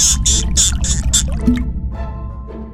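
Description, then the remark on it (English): Water spurts through a small hole in a dam in a quick series of about five hissing gushes, then settles into softer, uneven trickling and dripping over a low, steady rumble from the dam. “The water stopped flowing out of the dam, and everything seemed to be all right.”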